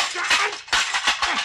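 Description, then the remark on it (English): Harsh, clattering crashes of a telephone being smashed, several loud impacts in quick succession with rattling debris between them, with no one talking. “Mr. Bailey, the phone, you busted I it.”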